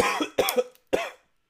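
Three harsh, loud coughs in quick succession, the first two nearly back to back and the third after a short pause, with no talking.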